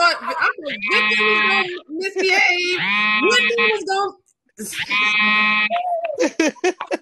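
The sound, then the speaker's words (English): A loud, buzzy alarm blares in repeated harsh bursts with a wavering, bleat-like tone, sounding three or four times in quick succession with only brief gaps between. “what alarm is that? She got an alarm going.”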